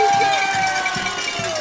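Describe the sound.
A home crowd at a football game cheers for the Carroll Cougars as the team is led out onto the field, in a steady, loud roar of many voices, with a regular low thumping pulsing underneath about every half second.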